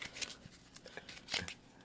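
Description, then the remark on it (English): Playing cards being shuffled: a series of crisp, irregular slaps and papery riffles, with a louder flurry near the end and no voices. “Your girl don't really know how to shuffle, but we gonna figure it out.”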